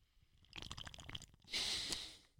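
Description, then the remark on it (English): Someone takes a pull from a can of Bush Light beer: a few soft wet slurping gulps, then a louder airy hiss and exhale as the can comes away, with no talking. “Hold on. Let me take a pull off my Bush latte.”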